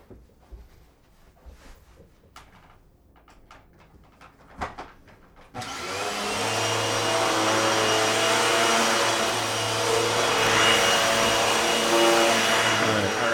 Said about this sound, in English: All right. This is vacuum sweeper.